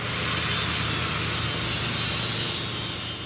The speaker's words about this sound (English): We walk past some workers sawing and working on various repairs. It's fairly easy to hear them because the noisy carbon capture and storage unit is currently down for repairs.